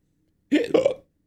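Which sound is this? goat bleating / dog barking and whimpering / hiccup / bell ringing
hiccup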